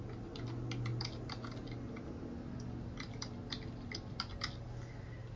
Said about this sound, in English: What is that web address? I'm going to type it in because I don't have that in my agenda.